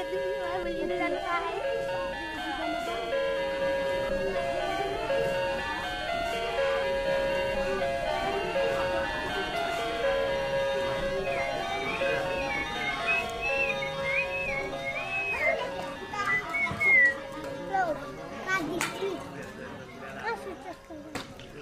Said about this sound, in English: In the dining room, there was a clock on the wall with these funny chimes that sounded like something out of a video game.